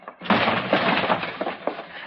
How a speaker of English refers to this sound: You're going to have to bust that door open if you want in, Mr. Dillon. And I'll bust it open.